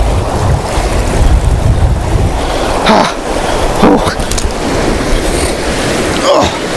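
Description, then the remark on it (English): Someone wades through a cold, muddy, flowing stream, with a few distinct splashing steps over the steady rush of moving water and some wind buffeting the microphone. “Oh my goodness, I've got to get across this cold water again now.”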